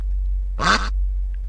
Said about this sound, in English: Having proved that a duck's quack does echo, they felt free to play within an electronics effects box to help us imagine the duck flying past the side of a cliff, 50 metres away. Now, listen carefully, and I think you'll hear how this myth started.